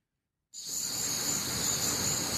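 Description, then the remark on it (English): A steady chorus of crickets chirping starts abruptly and continues without a break, a dense, high-pitched trilling at a constant moderate level with no voices present, picked up by a live microphone outside the Falcons complex in Flowery Branch. “It's all quiet at the Falcons complex. Crickets.”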